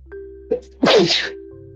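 A single loud sneeze with a short sharp intake just before it, then a burst of breathy noise lasting about half a second over a faint steady hum.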